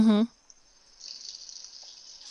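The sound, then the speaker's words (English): A brief voiced sound at the start, then a steady, soft trickle of 3/4 cup of water pouring into a well in a bowl of dry muffin mix, continuing to the end. “Okay, two eggs, 3/4 of a cup of water, and 1/4 cup of oil.”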